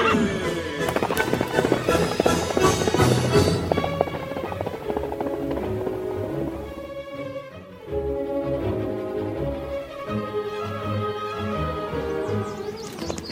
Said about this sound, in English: From out of the past come the thundering hoofbeats and the great horse, Silver. The Lone Ranger rides again. Hi-yo, Silver, away!